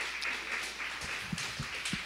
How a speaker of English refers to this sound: And I'm so grateful for all the teachers in the room. And for all watching, and if you're a teacher and you're watching, we pray for you all the time, and we are so grateful. We can give a round of applause for all the teachers in the room.